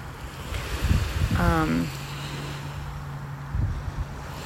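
A steady, rushing wash of beach surf and wind fills the whole recording, broken about a third of the way in by a brief tonal call, with a low continuous hum underneath.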